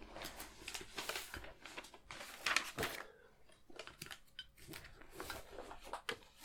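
Quiet rustling and crinkling of a sheet of paper with notes being fetched, a series of irregular dry handling noises with a few sharper snaps, as if the sheet is being picked up and shuffled.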